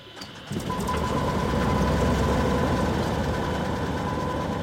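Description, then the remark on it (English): A small Cessna propeller plane engine coughs to life after half a second, then settles into a loud, steady drone with a rapid low-pitched throb, no voices. The engine is started for a guided tour flight over Pacific Lumber's forest lands. “He starts the engine for his Cessna propeller plane and takes me on a guided tour over Pacific Lumber's 211,000 acres, shouting over the roar of the engine.”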